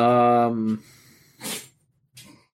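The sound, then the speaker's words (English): A single sneeze: a drawn-out voiced intake followed by a sharp, breathy burst, then a softer trailing huff of breath. “Bless you.”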